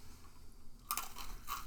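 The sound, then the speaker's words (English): Crisp crunching of someone chewing a crunchy salty snack, a quiet pause followed by a run of brittle bites and chews lasting about a second, with no talking. “These crunchy little salty snacks.”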